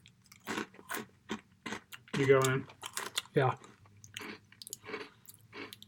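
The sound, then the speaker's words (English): Crisp crunching of honey barbecue French fry stick snacks being chewed, a series of short irregular bites with a couple of brief spoken words breaking in midway. “They're crunchy, but then they soften really quick.”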